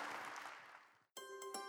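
An audience at Woodlands Church claps and cheers in praise in a dense wash that gradually fades, then cuts off abruptly into a short burst of bright, sustained music.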